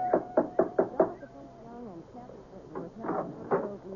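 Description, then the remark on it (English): A big brass door knocker strikes the front door of a house five times in quick, even succession, loud, followed by quieter shuffling and a voice starting to speak. “There was a big brass knocker on the front door.”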